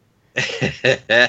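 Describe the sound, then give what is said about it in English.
A person lets out a short run of about four coughs, the first pair muffled and stifled, the last two louder and more forceful, with no talking. “Well, I was trying not to cough in the middle of it.”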